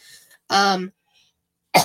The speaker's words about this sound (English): God, it's like that cough is just, like, sitting right here and it won't come out fully. It's the worst.